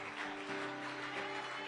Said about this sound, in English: One more time, amen. Give the Lord the last hand clap this morning for Him. Hallelujah.